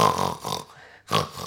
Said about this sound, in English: Pig. Oink. Oink. Oink. Oink.